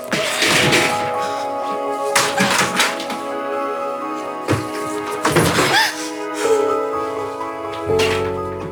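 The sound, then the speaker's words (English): A person in a rage throws a chair and then other objects around a room: a series of loud, irregular crashes, thuds and whacks over a steady droning tonal backdrop. “You took the chair and you threw it, and then you start throwing other things in the room.”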